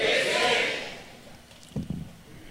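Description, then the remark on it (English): A burst of noise from a church audience, many voices shouting and cheering together at once in response to the preacher, loud at first and then fading out within about a second, leaving a murmur and a few scattered sounds. “Somebody shout, fix it.”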